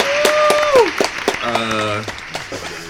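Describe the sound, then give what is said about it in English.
A round of applause: loud, steady clapping with sharp individual claps popping through, overlaid by voices whooping and cheering at shifting pitches. “This is episode 30. Round of applause.”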